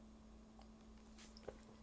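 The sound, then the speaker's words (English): A quiet sip of tea: a short airy slurp followed by a small click, over a steady low electrical hum with no one talking. “Let me sip a little tea.”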